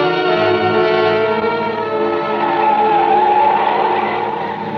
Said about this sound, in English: Then we came on the landslide. It wasn't a big one, but it had made a terrible mess of the road. He didn't slow down, and the car swerved crazily as it slipped from one side of the highway to the other.